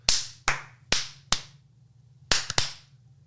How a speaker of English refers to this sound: Clappy claps.